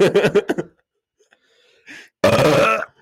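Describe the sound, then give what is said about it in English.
A strained, forced burp attempt: a few choppy throaty grunts, a pause with a faint breath, then one loud, rough, drawn-out croak that sounds like gagging. “Okay, you almost threw up there.”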